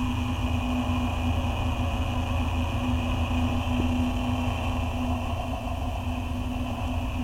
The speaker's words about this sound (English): So this is the sounds of the airlock.